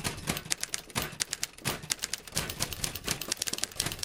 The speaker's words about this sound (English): We gotta get better roadies because this typewriter is horribly out of tune.